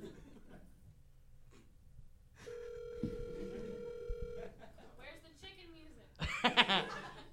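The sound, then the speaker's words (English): A steady electronic phone ring tone holds one pitch for about two seconds, as a phone call to Rob Fee is placed, with quiet voices and chuckling around it and a louder burst of laughter near the end. “Let's call Rob Fee really quick.”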